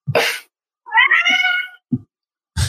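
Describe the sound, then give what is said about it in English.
A pet cat lets out a loud, drawn-out meow with wavering harmonics, framed by short sharp bursts of other noise before and after, with no one talking. “Is that your cat? Yeah, yeah. My cat, I guess, seems to either agree or disagree very emphatically.”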